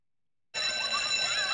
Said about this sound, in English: Hours later, the bell at Haddonfield Elementary rings, and Tommy leaves the school carrying a carving pumpkin.